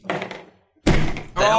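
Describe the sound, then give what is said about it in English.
A single heavy, dull thud of a person slamming their head onto a tabletop, loud, arriving right after a short burst of voices and a brief silence, then chatter and laughter pick up again. “I slammed my head into the table when I got that one.”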